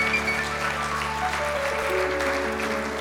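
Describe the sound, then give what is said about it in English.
An audience at Berean church claps their hands during a morning service, answering a call to clap if they love Jesus, in steady, dense applause for about three seconds, with a sustained organ or keyboard tone humming underneath and a few faint voices mixed in. “Let me hear your hands if you love Jesus this morning.”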